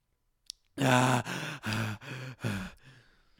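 drinking water

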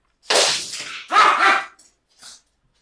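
dog barking

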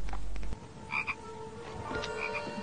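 toad croaking

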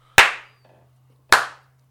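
hands clapping

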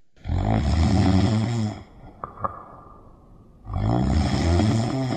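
snoring

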